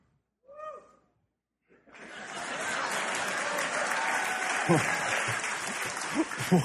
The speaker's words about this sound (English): Why are you clapping for that? It was one guy. I'm proud of him.